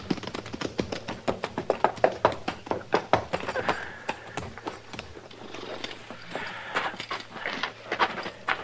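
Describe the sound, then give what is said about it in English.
Horses' hooves clop steadily on a hard floor as several horses are walked into a barn, a busy irregular clatter of many sharp knocks, with a low hum underneath and no talking. “Put our horses in the barn here”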